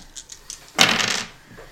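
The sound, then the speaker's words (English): A few light clicks, then a bright burst of two challenge dice clattering and tumbling across a hard surface for about half a second before settling. “Oh, it roll challenge dice too.”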